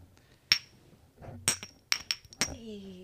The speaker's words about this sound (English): Wait, do the clink close up.